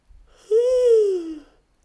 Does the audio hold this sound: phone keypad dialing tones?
no